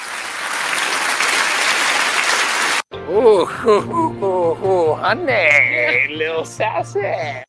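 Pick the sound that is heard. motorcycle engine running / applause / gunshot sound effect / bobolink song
applause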